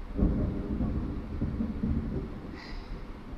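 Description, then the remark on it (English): Deep, rolling thunder rumbles continuously during a storm with lightning and rain, a heavy low roar that swells slightly near the start and never fully fades, with no voices present. “The lightning, man, is just, my god.”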